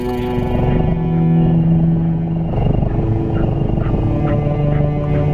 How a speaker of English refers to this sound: It's a kind of a mellow cello and a contented kitten. No, it's a little creepy for me.